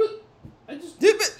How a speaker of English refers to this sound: Dude, are you just going to rip burps this entire time? Yeah, probably.